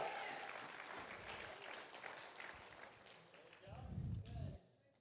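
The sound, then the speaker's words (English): An audience gives the Lord a hand clap of praise, clapping steadily in a dense, sustained wash of applause, with voices calling out underneath; a louder surge near the end before the clapping quickly dies away. “Come on and give the Lord a hand clap of praise in this place today.”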